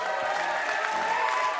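A crowd cheers and claps steadily for a moment, a dense wash of voices and applause at a consistent, moderately loud level without pauses.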